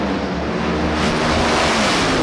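A loud, steady engine roar of a race car revving hard, with flames coming out of it, holds for about two seconds with a gritty, buzzing tone and a slight rise in pitch partway through. No one speaks.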